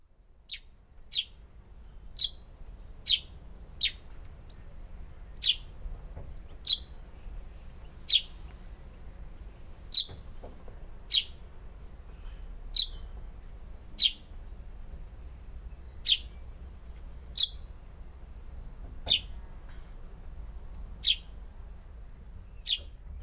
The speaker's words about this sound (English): The tree sparrow has a song similar to the house sparrow, but I always think it's a bit more cheerful. In your garden, you should keep your ears open for their dry tek tek calls coming from any hedges that you may have.